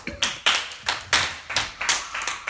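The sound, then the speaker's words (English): Steady clapping for a woman, about eight sharp claps at an even, moderate pace, clear, with no talking over it. “Clap for her.”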